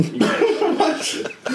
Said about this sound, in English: And I've got the freaking coughs, like apparently we're in here hitting a bong rip in his nursery.